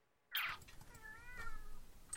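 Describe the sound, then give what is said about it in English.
A cat named Tibby lets out a single drawn-out, wavering meow, preceded by a brief sharp rustling burst, with no voices. “Hi. Meow. Hey, you alright?”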